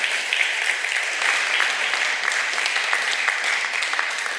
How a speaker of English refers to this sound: Give a round of applause, folks. Thank you.